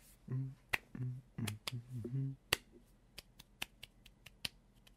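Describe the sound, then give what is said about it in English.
Light, polite hand claps tap out at an unhurried, uneven pace, each one a small crisp snap. A voice hums or murmurs under the first half, then the claps continue alone. “That's how the queen claps.”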